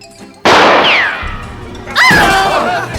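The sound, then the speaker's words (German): A single loud revolver shot with live ammunition, fired upward and hitting an electronic surveillance camera, cracks out and rings off in a long, echoing tail, followed about a second and a half later by another loud, tonal burst of sound. “Das war scharfe Ladung! Das war ein echter Schuss!”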